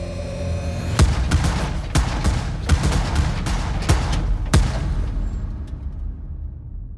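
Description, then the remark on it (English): Twelve muffled gunshots go off inside the back of a van on an empty street on a cold wintry evening, a hit squad assembled by the Krays killing Frank 'the Mad Axeman' Mitchell, in a rapid, uneven burst, heavy and thudding over a low rumble that fades into quiet afterward. No voices. “12 muffled gunshots ring out.”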